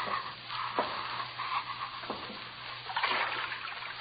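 Slow, heavy footsteps slosh through ankle-deep water, roughly three splashing strides spaced a second or so apart, over a steady low hum and constant watery wash.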